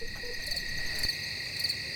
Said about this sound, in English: That's what's officially known in this business as crickets. We had to get some cricket sounds in here.